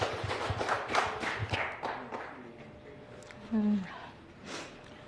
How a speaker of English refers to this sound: Please could we give her a warm round of applause?